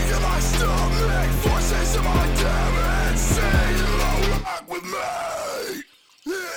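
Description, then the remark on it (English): A person demonstrates screaming from the stomach: a harsh, guttural scream held for several seconds, loud, with a gritty, growling tone, then breaking off into a few shorter, rougher bursts before cutting out. “So when I heard that screaming is, like, pretty much the same thing, it was just like, oh, okay.”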